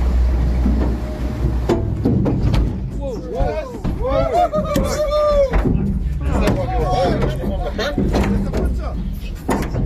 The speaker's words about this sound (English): Now, they did manage to get a short video of the shark getting aboard. Now, we're going to have a wee listen. You can hear the shark hitting the nose of the boat, flopping around and trying to get back in the water.